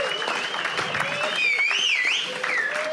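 An audience applauds steadily for two guests who have just been on stage, a dense wash of clapping with shrill wavering whistles and some cheering rising over it.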